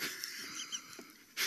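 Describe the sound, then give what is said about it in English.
A voice imitates a hacking cough with raspy, breathy wheezing and a few small catches, ending in a sharper, louder burst. No words are spoken. “It literally means like a hacking cough.”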